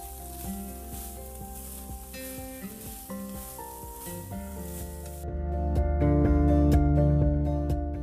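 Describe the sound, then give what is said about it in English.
Taco meat mixed with taco seasoning and 3/4 cup of water sizzles steadily in a pan on a stove, a constant crackling hiss with occasional scraping stirs, growing a bit louder and fuller partway through. No one speaks. “After your meat is all incorporated with your delicious taco seasoning with 3/4 cups of water, with your 2 or 1 packets of taco seasoning, go let it simmer for 3 to 4 minutes.”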